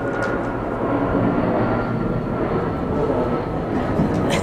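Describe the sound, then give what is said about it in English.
A continuous, loud low roar of an airplane landing, a dense steady rumble, unchanging in level with no voices over it. “That was me, plane landing,”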